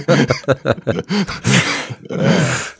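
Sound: dog barking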